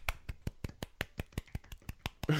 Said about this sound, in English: So kudos. So golf clap for that church.